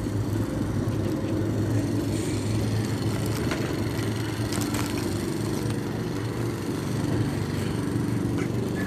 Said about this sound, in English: Everyone's mowing their lawns today. Yeah. Probably because it's only going to be the hottest day in October.